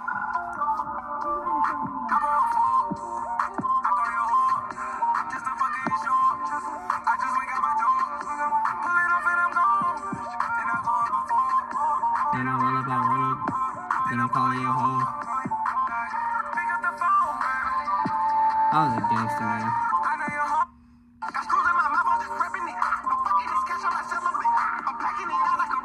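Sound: hip-hop song playing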